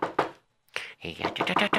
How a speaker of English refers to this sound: Okay. Let me knock on this door.